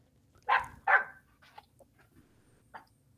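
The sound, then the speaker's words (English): A dog named Baby barks twice in quick succession, loud, followed by a few softer, shorter yips trailing off over a faint low background rumble. “I'm just listening to baby bark.”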